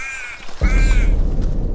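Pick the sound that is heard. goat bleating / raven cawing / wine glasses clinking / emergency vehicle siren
raven cawing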